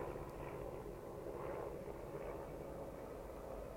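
A helicopter drones steadily overhead, a continuous low rumbling engine roar that holds at the same level throughout, with no voices.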